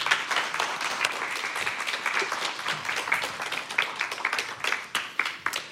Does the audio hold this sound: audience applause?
yes